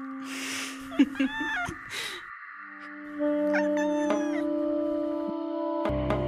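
A baby gray kitten lets out several short, rising-and-falling meows that sound a bit like "mama," clear over a steady droning hum, with a burst of hissy noise early on.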